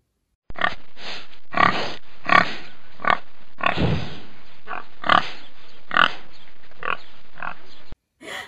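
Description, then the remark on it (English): A pig grunts and oinks repeatedly in short, snorting bursts, fairly loud, with a few longer squealing grunts mixed in and no talking. “It's a pig.”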